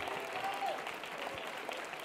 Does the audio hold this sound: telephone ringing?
no